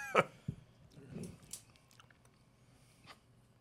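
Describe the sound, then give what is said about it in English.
Close-up chewing with wet, crunchy mouth sounds and a few sharp bites, irregular and intimate, right up against the microphone with no talking. “You know, I bet you some people watch these food episodes to fall asleep because of all the chewing in the mic.”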